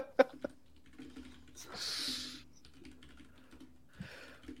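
Close, fairly quiet clatter of typing on a computer keyboard, irregular key taps with a couple of sharper clicks and a brief hiss-like burst in the middle, no talking.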